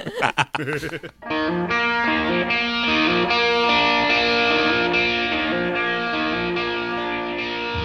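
After a brief burst of voice, a full band kicks in: distorted electric guitar chords over steady, punchy drum hits, loud and close, playing continuously to the end.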